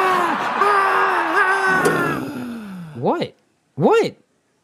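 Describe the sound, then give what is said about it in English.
A single voice imitates a cheering crowd with a long, wavering 'aaah' roar, followed by two short rising-and-falling whooping calls separated by brief silences. “And the crowd goes wild.”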